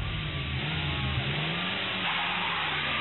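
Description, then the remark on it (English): A car engine revs hard and accelerates as the car is driven through a crowd of people, a steady loud mechanical roar with rising pitch, continuous for a few seconds with no talking. “You can't drive this car through all these people.”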